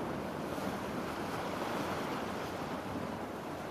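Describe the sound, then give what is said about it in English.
A steady, full rush of ocean surf washing against the shore, a continuous broad roar with faint wind and no distinct individual crashes, heard alone without any voices. “The waves splashing against the shore.”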